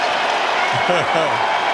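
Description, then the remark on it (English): A packed crowd in the Rose Garden arena cheers and chants for Derrick Rose in a steady, dense roar, everyone on their feet, with a few louder individual shouts rising above the din partway through. “Everybody's on their feet cheering.”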